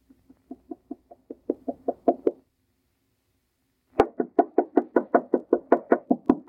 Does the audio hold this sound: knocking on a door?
yes